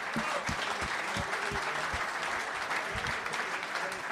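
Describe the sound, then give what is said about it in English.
A crowd of people claps steadily for a contribution at a live event, a dense, sustained wash of applause with sharp individual hand claps popping through, continuing at an even level throughout. “I'll give him a big round of applause for that contribution.”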